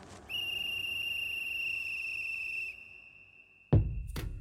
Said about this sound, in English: What he discovers is so shocking that instantly he reaches for his whistle to alert his friends.